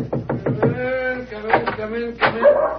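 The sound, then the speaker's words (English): Dogs, one of them called Roger, bark excitedly, a quick burst of sharp yaps followed by drawn-out, whining howls and a couple more loud barks. “The dogs seem very pleased with themselves tonight.”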